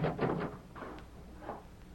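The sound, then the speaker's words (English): A wooden door opens with a short run of clunks and rattles, then a couple of softer knocks as it swings and settles, as the Lone Ranger enters the sheriff's office in Kirkwood from the rear without knocking. No one is talking. “Then, leaving Tonto on guard outside, the Lone Ranger entered without knocking.”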